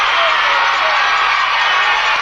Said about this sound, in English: Well, ladies and gentlemen, you hear the tremendous roar of the crowd.